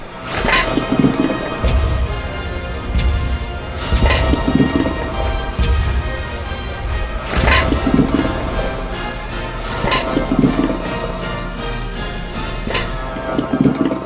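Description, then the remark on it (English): Salmon swimming through the tube of a fish transport device, the salmon cannon, moved by air and a little water: irregular wet slaps and thumps every second or two, rising over a constant loud rushing, churning background. No one speaks. “I mean, that's why they're making that flopping sound.”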